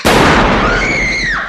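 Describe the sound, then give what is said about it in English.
A single loud gunshot cracks out abruptly, followed by a long, roaring echo with a faint whistling ring that slowly fades. No voices are heard. “Just gunshot.”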